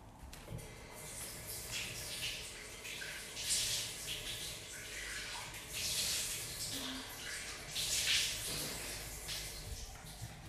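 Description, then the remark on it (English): Water runs steadily from a tap while someone washes cleaning milk off their face with water, with several louder splashing bursts rising over the continuous hiss. No one speaks. “I still have the water on it though, and now we're gonna wash everything off with water.”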